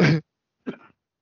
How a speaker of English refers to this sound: I cough now, I just ruined it.